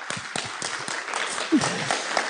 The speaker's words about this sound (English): Hey, if you're going to clap, you got to commit, okay? Let's try that again.